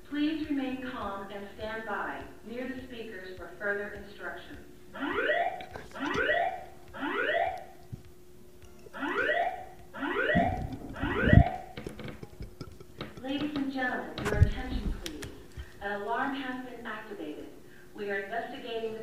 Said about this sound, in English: That's what they're saying in the PA. That's what it is. Listen. An alarm has been activated. We are investigating the cause.